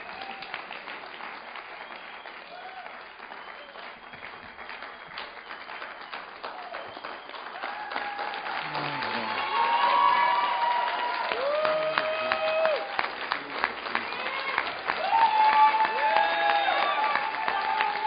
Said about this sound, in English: Let's give Jim a big hand.